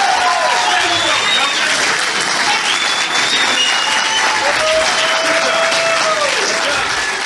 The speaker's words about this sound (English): I left that applause in there on purpose.